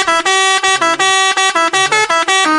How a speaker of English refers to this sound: Sound the horn.